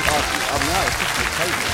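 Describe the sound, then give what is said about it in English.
A burst of recorded applause played from a hot key during a quiz, dense and steady clapping at a constant loudness for under two seconds, with a voice whooping and talking over it. “Let's give him a round of applause if I can remember which hot key it is.”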